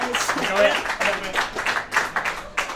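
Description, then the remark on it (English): A live audience at a show at the Old Red Lion in Angel, Islington claps and applauds steadily throughout, a dense crowd sound, with a voice speaking over the applause. “Clap yourselves. You are all stars in our eyes, of course.”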